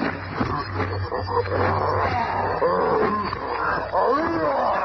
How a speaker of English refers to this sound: A ton of fighting fury in the form of a maddened gorilla springs on the thing.